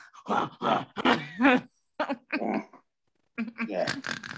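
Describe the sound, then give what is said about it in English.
A person imitates a monkey with a run of rough, throaty grunts and huffing breaths in short bursts, pausing briefly before a final cluster of vocal grunts, fairly loud. “Yeah, just breathing and they're all missing out. Like a monkey. I think that's the noise that happens.”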